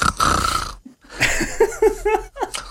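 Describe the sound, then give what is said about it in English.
A voice imitates the high-pitched treble snoring of a small sleeping creature carrying across a valley: a raspy, nasal snore, a brief pause, then a wavering run of squeaky, gurgling snorts. “As the others are asleep, the sound of treble snoring crosses the valley.”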